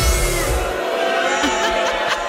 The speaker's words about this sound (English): I may have added the booing to illustrate a point. I was like, what is happening? Why are they booing? Well, we're illustrating a point here.